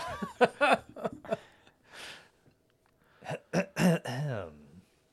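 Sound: man clearing his throat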